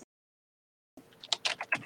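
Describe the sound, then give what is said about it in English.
After a moment of silence, a quick run of soft clicking keystrokes taps out in an uneven rhythm, quiet, like someone typing a message on a computer keyboard. “Don't listen to my keyboard. Keyboard ASMR from Claire right here.”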